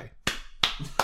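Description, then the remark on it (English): Three sharp hand claps in a steady, evenly spaced rhythm, each a crisp, bright smack that rings out briefly before the next, with only faint background murmur between them. “We're all clapping.”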